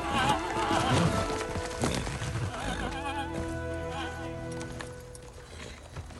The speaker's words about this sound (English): it's during the mustering of the Rohirrim at Dunharrow when the horses are frightened